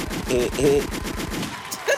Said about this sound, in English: And a gunshot.